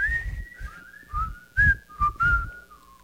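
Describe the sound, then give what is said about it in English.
A person whistles the short, bouncy melody of a song, the notes sliding and stepping in a catchy rhythm over about three seconds, with no talking. “And the whistle part goes.”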